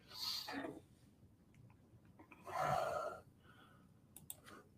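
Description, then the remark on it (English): Soft, scattered taps on a computer keyboard as someone types a search for the ant song on YouTube, quiet, with irregular gaps between keystrokes and a couple of louder breathy rustles mixed in. “I'm typing in the ant song.”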